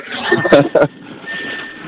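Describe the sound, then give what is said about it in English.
Garbled, tinny phone-call audio from a car Bluetooth connection that won't link up cleanly: choppy voice fragments and a thin steady electronic tone, fairly loud, cutting in and out. “I, in the Bluetooth, you know, when you get into your car and the Bluetooth doesn't like kick in right away.”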